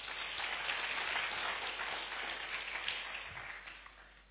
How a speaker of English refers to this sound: Clap for your pastor.